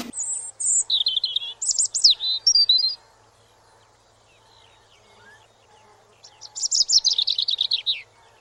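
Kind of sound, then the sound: bird, european robin song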